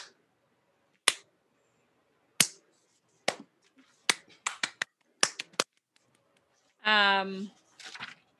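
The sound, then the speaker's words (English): Soft, sharp claps come one at a time, slow and uneven at first, then a quicker cluster of light hand claps; a short voiced sound follows near the end. “You were like clapping quietly.”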